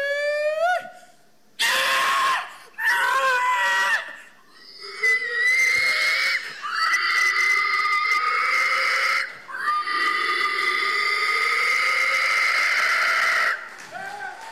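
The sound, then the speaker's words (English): A man's voice imitates a pig with loud, shrill squealing calls at a pig-calling contest, a few short bursts followed by long sustained wails, strained, with no other sound behind them. “that was a good pig call”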